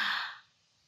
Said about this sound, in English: It's like breathing. When you take a deep breath in, take a deep breath with me.